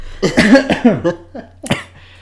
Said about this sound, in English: Let me clear my throat. Had some nuts earlier.